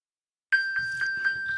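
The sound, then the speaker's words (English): A phone's electronic ping alert, accidentally triggered by hitting the ping-your-phone button while trying to mute it, starts abruptly and repeats rapidly, about four bright chiming beeps per second over a sustained tone, fairly loud, with a faint low murmur underneath. “That's what happens when you try to mute your phone and you accidentally hit the ping your phone button.”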